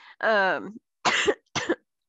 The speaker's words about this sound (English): Sorry guys, I got a little sick after my vacation, so you might hear a little coughing.